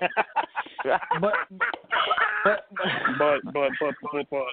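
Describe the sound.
A voice imitates a duck, giving a rapid run of nasal, honking quacks and squawks, loud, with brief gaps between the bursts.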